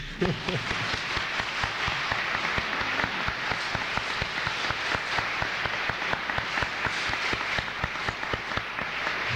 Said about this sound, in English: And I'm just very grateful, and I just give you my deep and heartfelt thanks. Thank you. I want us to applaud.